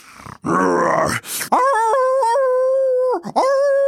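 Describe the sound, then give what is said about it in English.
A rough, growling cry gives way to a long, wavering wolf howl that holds its pitch, dips briefly, then rises again, loud, with no talking. “Unfortunately, there also lived in that neighborhood a big, bad wolf.”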